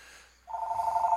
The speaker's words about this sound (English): I have a phone call.